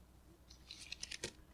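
A quick, crisp riffle of playing cards being shuffled, a short burst of papery flicks ending in a sharp snap, fairly quiet with no voices.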